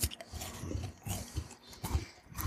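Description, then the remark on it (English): Steady chewing of a crunchy strawberry and chocolate Kit Kat Duos wafer bar, with about six muffled crunches in a regular rhythm and soft mouth noises between them. No one speaks. “And that wafer accentuates the flavors in such a way. It adds a crunch.”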